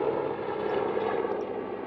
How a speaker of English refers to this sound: I'm just going to wait until this chopper passes.